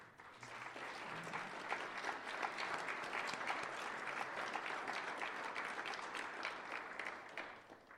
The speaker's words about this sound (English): If you're a member of the board of directors for CSI, could you stand up so we could give you some applause as well?